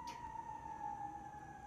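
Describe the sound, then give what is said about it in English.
An emergency vehicle siren holds a steady, piercing tone that drifts slightly lower in pitch over a low rumble of traffic, with no one speaking. “And I'm gonna wait for this siren.”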